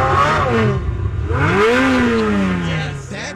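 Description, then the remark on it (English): A car engine revs loudly, its pitch climbing and falling back twice in quick succession over a steady low rumble. “When he revved it, it sounded like Ferrari.”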